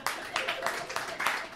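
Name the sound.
audience clapping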